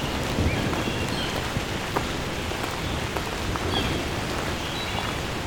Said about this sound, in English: And a lot of rain. Well, not that much rain. Wouldn't be recording.